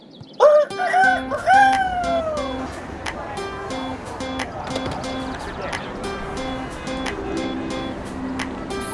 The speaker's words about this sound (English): and this is what a Brooklyn rooster sounds like.